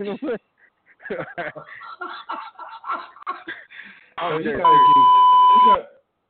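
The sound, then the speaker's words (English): A loud, steady censor bleep tone lasts about a second near the end, cutting over voices that were talking and laughing just before it. “We gotta beep you right now.”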